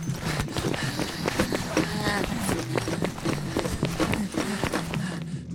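Footsteps of two people approaching an open office door and slowly creeping inside: a quick, steady series of sharp taps at moderate loudness, with a low murmuring background underneath throughout.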